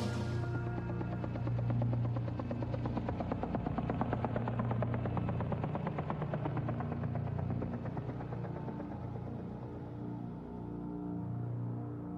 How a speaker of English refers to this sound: And I've noticed at the end of the song, I like that we get the helicopters,